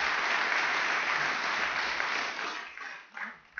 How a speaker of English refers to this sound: Of course, we were led by, and the foundation to all of that was by the incredible NAATP staff. Could we just do one more quick round of applause for the incredible NAATP staff?